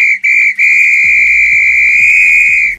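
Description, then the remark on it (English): A referee's whistle blows loud, signalling the end of play: two quick short blasts followed by one long sustained blast, shrill and steady, with faint low thuds beneath it and no talking. “If this were a real bit of extra time, this is when you're able to blow the whistle because it's finished.”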